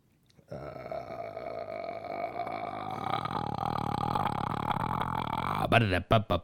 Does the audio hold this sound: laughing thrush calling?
no